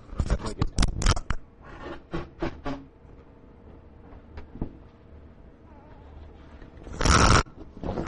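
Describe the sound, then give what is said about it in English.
A microphone clatters to the ground in a quick burst of sharp, loud knocks and thumps, followed by a few softer bumps and scrapes, then a brief loud rush of noise near the end. “I didn't want to have it record me blowing my nose, but it records the mic falling on the ground.”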